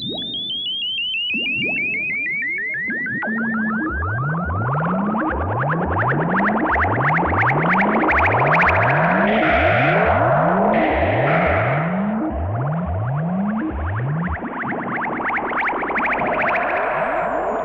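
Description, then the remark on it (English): Electronic closing-title music: bubbling that suggests the test tubes of a chemistry lab fills the air as a steady run of rising sine-wave chirps repeats in quick succession, after a long descending synthetic glide at the start. It is loud throughout, with no voices. “The bubbling sounds rise hopefully, aided by ascending sine waves.”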